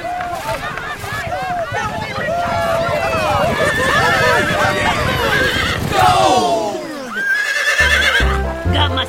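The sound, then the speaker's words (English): A horse whinnies loudly and repeatedly in rising and falling cries, with hooves clopping underneath; near the end the neighing fades and a short burst of rhythmic thumping follows. “I'm on, and I have the reins of my horse.”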